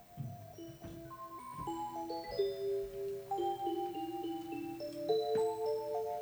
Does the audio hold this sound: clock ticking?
yes